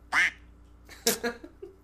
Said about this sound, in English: Quacks. I heard. They spoke in quack.